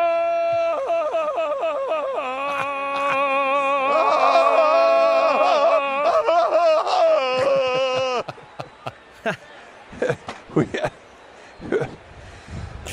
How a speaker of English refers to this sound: So this is what it sounded like. Just imagine a guy yawning and then another lady yawning.